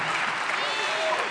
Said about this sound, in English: Happy birthday, Jesus. Come on, give Jesus another round of applause. Come on.